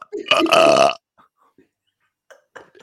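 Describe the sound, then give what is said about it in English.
A single loud, drawn-out burp made on command, lasting about half a second, followed by near silence with a few faint, brief vocal sounds. “I used to be able to burp on command.”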